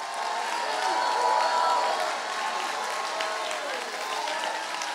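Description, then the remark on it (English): An audience in a church sanctuary claps and shouts together for about 15 seconds in a steady, dense roar of applause, with scattered voices crying out over the continuous clapping throughout. “Come on, if you believe that with me, take 15 seconds, clap your hands, all ye people, and shout.”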